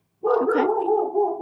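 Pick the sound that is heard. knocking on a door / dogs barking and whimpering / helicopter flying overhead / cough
dogs barking and whimpering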